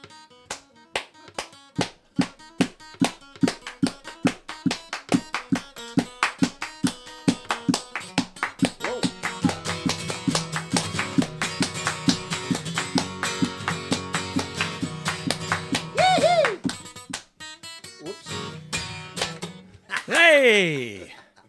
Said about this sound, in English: providing the transition music. Yes, it's the first time he's played that song original, so it's great.